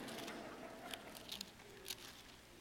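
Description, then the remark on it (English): Soft, scattered rustling of many Bible pages being turned at once as people turn from Matthew 5 to the New Testament book of Colossians, with a few brief crisp flicks standing out from a low, steady papery hiss. No one speaks. “Let me hear some pages turning.”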